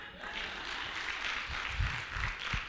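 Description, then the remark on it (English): An audience claps steadily, a dense wash of many hands that holds at an even, moderate level throughout, with a few low thumps or murmurs rising beneath it toward the end. “I know some of you aren't clapping.”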